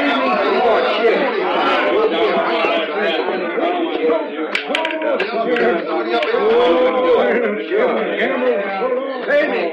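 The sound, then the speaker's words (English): A dense murmur of many overlapping voices fills the whole stretch, a steady, loud crowd chatter with no single speaker standing out and only brief sharper bursts now and then. “Some crowd, huh?”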